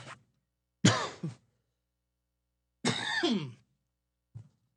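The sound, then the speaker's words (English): Someone clears their throat twice with rough, raspy coughs about two seconds apart, followed by a faint short huff near the end. Nobody is talking. “I should have a cough button, especially when I'm ill.”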